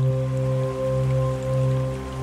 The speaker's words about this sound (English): The rain patters on the new leaves of summer.